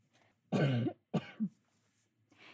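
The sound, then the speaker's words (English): A loud cough into a husband's dress shirts, followed by a second, shorter hacking cough with a throaty catch at the end. No one speaks. “I just coughed into my husband's dress shirts.”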